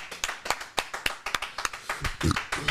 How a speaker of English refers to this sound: One more round of applause for the You Should Know podcast team accomplishing the first headlining live show.